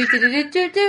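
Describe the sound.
A person vocally imitates horse hoof noises in three voiced bursts with wavering, sliding pitch, fairly loud with no other sounds around.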